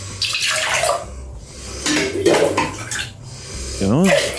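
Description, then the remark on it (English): Urine collected from a toilet bowl is ladled into a glass in four or five splashy scoops, with clinks of the ladle against glassware between pours, and a brief voice toward the end. “He takes the ladle, he ladles it into a cup.”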